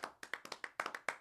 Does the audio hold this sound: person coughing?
no